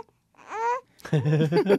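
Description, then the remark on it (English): A small, yawning child in a radio studio babbles in two bursts: a short, high-pitched wavering coo, then a brief pause and a longer, louder stretch of throaty, voiced babble. “So many different things in a radio studio to disturb a small child, especially one who is yawning so much.”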